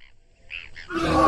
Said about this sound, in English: On this day, however, the roars of the flying reptiles seemed more numerous than was usual.